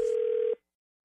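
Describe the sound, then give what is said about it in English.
A steady telephone tone hums for about half a second, loud and alone, then cuts off abruptly into silence; no separate dialing beeps stand out. “You'll find out in your phone tap right now. It's another phone tap.”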